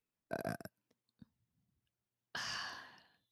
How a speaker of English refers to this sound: Like, okay, I have to belch. I had a macchiato.